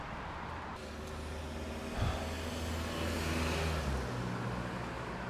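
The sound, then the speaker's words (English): Steady traffic noise at a bus stop with a low engine rumble and humming tones, a brief thump partway through, and a continuous wash of passing vehicles, with no one talking. “Yeah, this is the bus stop we're at.”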